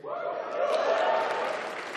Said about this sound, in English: Didn't expect that to get such applause, but just to tell you who I am a supporter of our military.